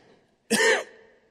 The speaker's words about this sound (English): I start coughing on my apple chip.